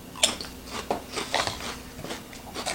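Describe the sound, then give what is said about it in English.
Crunching of pizza-flavored Calbee potato chips being chewed, a quick series of sharp, crackly bites repeating roughly every half second, with no talking. “Just get them because they're a decent chip. Crunchy.”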